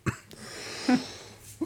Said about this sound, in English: Excuse me. Suddenly I'm coughing like a crazy dog.